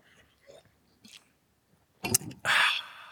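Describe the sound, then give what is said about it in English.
A sip of coffee: a few faint mouth clicks, then a short wet slurp followed by a breathy, airy exhale, with no talking. “I need to take a sip right now.”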